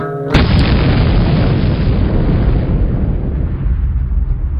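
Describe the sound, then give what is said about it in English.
A single loud explosion sound effect of a tape self-destructing bursts in with a sharp onset, then a heavy, rumbling roar that stays dense in the low end and slowly fades over several seconds. “This tape will self-destruct in 5 seconds.”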